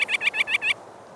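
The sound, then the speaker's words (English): A rapid series of five or six harsh, high chirping bird calls, fairly loud, running together for under a second before stopping, with no talking. These are rock sandpiper calls; rock sandpipers are shorebirds found along a spit. “Gulls, waterfowl, and many other birds forage along the spit, but rock sandpipers are the only shorebirds.”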